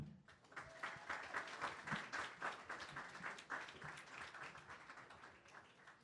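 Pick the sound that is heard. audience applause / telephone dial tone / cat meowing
audience applause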